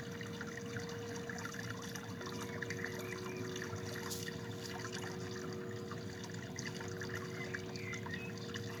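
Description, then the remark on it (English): Water flows and trickles steadily throughout, a continuous gentle babbling at moderate, even loudness, with a faint sustained tone humming underneath and no voices. “Letting it go into the water and allowing it to flow away.”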